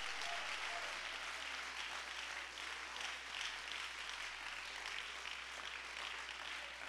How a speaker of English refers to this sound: Woo! Give the Lord a real hand clap of praise.